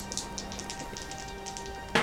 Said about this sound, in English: Ooh, this is a first roll with the new D&D magazine dice. Yeah, let's see if it brings me any luck.